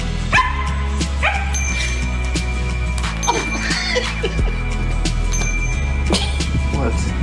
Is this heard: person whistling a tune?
no